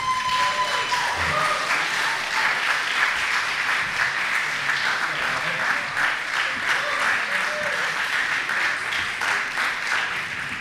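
Steady, dense applause from the audience at the Madison Story Slam welcoming a first-time storyteller, many hands clapping at once in a continuous wash of sound that holds at an even loudness throughout, with occasional faint cheers mixed in.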